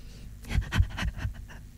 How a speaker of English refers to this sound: What the hell is that? That's my nervous breathing. Are you having a stroke or something?